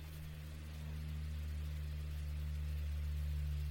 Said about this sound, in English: Now there's a plane flying over. How sensitive is this microphone? I'll wait.